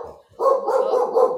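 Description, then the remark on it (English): A dog, Scamp, barks loud, a short low sound followed by a drawn-out, wavering bark-yowl that carries on for about a second, with no one talking. “Scamp is still crying and Beowulf got a toy.”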